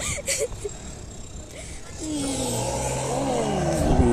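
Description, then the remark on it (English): A powerful car engine swells in after a couple of quiet seconds, its pitch climbing and sweeping as it revs hard and roars past, loud, with faint voices at the start. “That's a nice sounding car.”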